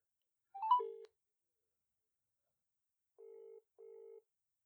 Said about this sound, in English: just calling her. I think. Straight up ringing her.